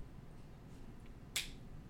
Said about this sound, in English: Oh, Clapper? I clapped.